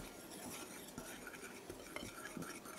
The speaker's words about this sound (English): Ground cumin. And, for those who like it hot, some cayenne pepper. I'm not going to go hog wild with it because some people here might not want it really hot. And we're just going to combine this, whisk it together a little bit.